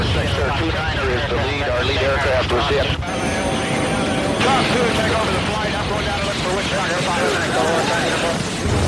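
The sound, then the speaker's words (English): Loud, steady engine and rotor noise of helicopters flying ahead while taking heavy fire from all over a landing zone, heard over radios, dense and continuous, with garbled radio-style voices talking over it and a brief break in the roar near the middle. “Over the radios, we can hear the choppers ahead of us. They're taking heavy fire from all over the LZ.”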